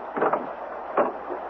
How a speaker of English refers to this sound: The door is unlocked. Move forward. Turn the knob. Do everything slowly. That's it. Open the door.